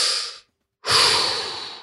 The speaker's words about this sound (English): So take a big deep breath. Come on, let's do it.